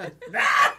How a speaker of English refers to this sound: I'm sorry. There's those burps.